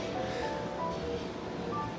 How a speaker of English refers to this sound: What's that sound? It sounds like water. I thought it was someone was taking a piss.